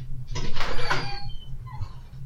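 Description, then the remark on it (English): A door opening to let a dog in: a short, fairly loud scraping, sliding rush lasting under a second, then fading to quieter rustling over a steady low hum. No one speaks. “Ad is letting the dog in.”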